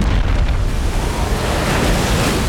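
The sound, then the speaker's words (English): Loud, continuous rush of surging tsunami water flooding into the city of Constantinople, a dense roar of waves churning without pause, with a buffeting wind-like noise over it and no voices. “The water, displaced by its massive footfalls, rushed into the city.”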